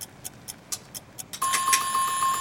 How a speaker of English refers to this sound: And that's our timer.